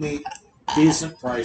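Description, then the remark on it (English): A short, loud burp rises up in the middle of a man's casual talk, briefly drowning out his words before he keeps speaking. “Burped.”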